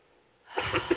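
A brief, breathy throat-clearing sound rises out of near silence halfway through, moderately loud, ending with a short voiced rasp, made while clearing the throat chakra during an energy healing session; no one talks.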